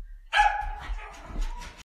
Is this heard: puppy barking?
yes